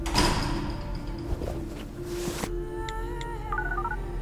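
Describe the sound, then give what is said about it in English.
Automatic doors slide with a steady mechanical whoosh that cuts off abruptly, followed by a few soft electronic beeping tones, moderately loud, with no one speaking. “doors please.”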